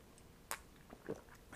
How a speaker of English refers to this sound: Hi, I'm going to take a sip of tea now.